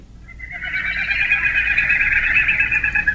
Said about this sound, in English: So in addition to that ticking call, the male of the species of this mystery bird produces that hollow, low-whistled sound called winnowing. Our bird is a foot-long shorebird found in wet, grassy areas where it probes into mud for small invertebrates